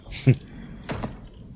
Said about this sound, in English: Knock on the door.